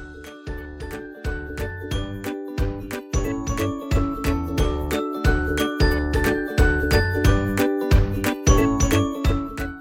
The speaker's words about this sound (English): When lepers left their colony and came to town, they were their own siren. They came in ringing a bell and yelling, "Unclean! Unclean!"